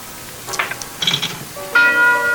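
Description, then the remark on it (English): A clock bell strikes one o'clock, a single loud clang whose ringing overtones hold steady to the end, after a few quieter scattered knocks and rustles. “And the clock breaks at 1 o'clock and the curse is over for the night.”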